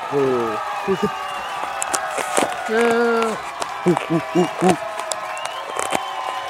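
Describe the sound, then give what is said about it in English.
A short burst of crowd cheering, played as a sound effect from a soundboard button, with whoops and rising shouts layered over a bright, busy background, ending in a few quick rhythmic vocal cheers before it fades. “Let me get the cheering button.”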